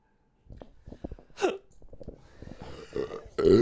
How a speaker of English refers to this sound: I like how I put it there and the hiccup just happened. Immediately came up.